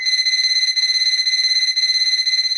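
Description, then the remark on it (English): A high-pitched electronic beeping pulses rapidly and evenly, several times a second, holding a steady tone throughout with no voices present. “We have to stop for a second. Do you know what that beeping is?”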